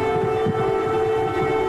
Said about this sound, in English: The air raid sirens in Kyiv sounded again overnight.